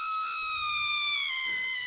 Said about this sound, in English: That is screaming.